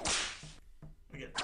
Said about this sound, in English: Here we go. Give it again. Give it another whip.